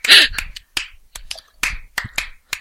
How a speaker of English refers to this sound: I'm clapping. It's clapping, nothing else.